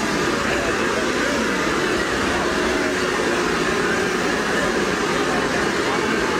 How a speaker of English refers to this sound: We have 10,000 people here. We have set the world record. In honor of that, I think it's time we do one more celebratory kazoo. Everyone, kazoo to your lips. Let's do it for Melbourne.